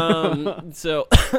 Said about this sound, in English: So we cough. Right, I know, right into it.